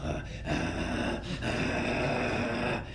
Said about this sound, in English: This brother was asleep. He was calling him, mashallah. He was snoring. He was so loud